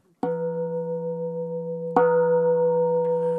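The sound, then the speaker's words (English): A meditation bell is struck twice, about two seconds apart. Each strike rings out into a steady, humming tone with layered overtones that sustains without fading, the second strike slightly louder. “So I'm going to hit the bell, and if you'd like, join in the chanting Ho, sharing our prayers and blessings with all beings.”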